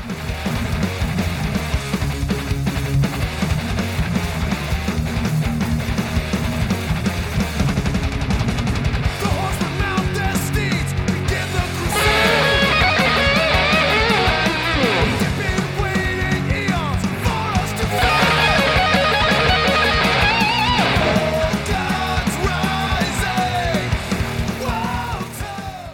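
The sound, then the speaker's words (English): Loud, dense heavy rock playing throughout, with two quick bright guitar fills bursting out over the band, each trailing into an echoing repeat before the riff carries on. “And I went for that same kind of effect with the echo on there.”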